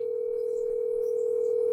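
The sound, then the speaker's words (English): A phone line's ringing tone, a single steady electronic hum held without a break, moderately loud, with no voices over it, as someone calls a friend. “I need to phone a friend. All right, then. I'm calling”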